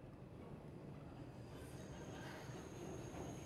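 A subway train at Grand Central Station rumbles steadily, its low roar filling the space while faint high-pitched wheel squeals ring out above it; no one speaks.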